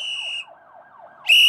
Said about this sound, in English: Hey, what's that? Police cars, they're outside.